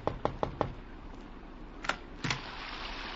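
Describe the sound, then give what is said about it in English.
An old man knocks on a door late at night in London: four quick, evenly spaced, crisp knocks, followed after a pause by a couple of heavier thuds and a rustle, with no voices. “I thought it was his knock that I heard on my door.”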